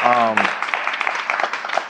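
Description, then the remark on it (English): A short voiced exclamation gives way to a burst of audience applause at a live event in New York, a dense, steady crackle of many hands clapping at a fairly loud level for over a second. “Clap it up for that.”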